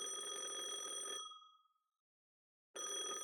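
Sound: telephone ringing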